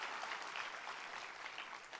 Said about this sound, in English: Come on, anybody thankful that Jesus died on the cross so you and I, that is a pitiful Easter clap. Come on, anybody thankful we're in right standing with Jesus today.